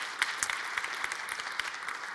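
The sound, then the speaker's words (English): Steady audience applause, a dense wash of many hands clapping at an even, moderate loudness, with sharper individual claps popping out now and then. No one speaks. “Teary eyes, applause.”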